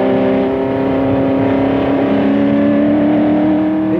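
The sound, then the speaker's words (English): A racing car engine drones steadily on a circuit, its pitch climbing slowly as it accelerates under the first Dunlop Bridge and down the hill into the S's, with no voices over the continuous mechanical roar. “Then you're accelerating again, under the first Dunlop Bridge and down the hill, and into the S's”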